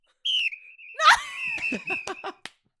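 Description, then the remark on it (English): A loud, shrill whistle is blown in a long sustained blast, then continues wavering as sharp claps, smacks and shouts of voices break in around it, ending with a final slap. “Get the whistle get in the whistle.”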